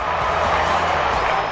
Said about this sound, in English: Crowd goes up. Put your glasses down. That's a try.